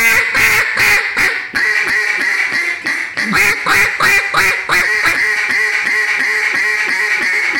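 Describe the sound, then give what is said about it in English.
A duck call blown loud in a rapid series of raspy quacks, the notes coming in quick rhythmic bursts with brief pauses between runs. “This is the thing with a duck call, in my opinion, and Rick said that too that day, is that when you get it, you will be able to string your notes out forever.”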